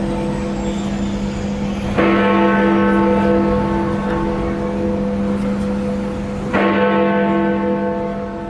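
Big Ben, the large bell in the Elizabeth Clock Tower at the Palace of Westminster (Houses of Parliament), cast in 1858 by George Mears and Company, Whitechapel Bell Foundry, pitch about F, mass 13,800 kg, tolls twice, each deep, booming strike swelling and then ringing on in a long, shimmering hum of overtones, over a steady wash of traffic noise.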